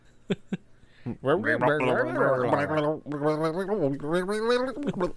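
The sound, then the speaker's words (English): A voice imitates an alien gurgling underwater: two short clicks, then two long, wobbling, bubbly vocal bursts with a warbling pitch, fairly loud and without words. “That sounded like an alien underwater.”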